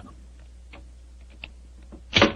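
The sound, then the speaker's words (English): A skeleton key scrapes and clicks faintly in a locked door's lock for a couple of seconds, then a louder, sharper clunk as the lock gives way. No voices. “Is the door locked? Yes, but I think a skeleton key will do the trick.”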